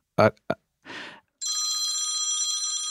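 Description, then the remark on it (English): A computer rings like a phone: a steady, bright electronic trill that starts abruptly and holds to the end, just after a couple of short vocal sounds and a brief rustle. “Who's, you have a phone ringing? I don't, that, it's my stupid computer.”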